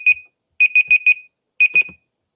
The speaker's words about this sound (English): I'm sorry, I thought there was a smoke alarm going off. No, that was my timer, and I didn't know it actually happened.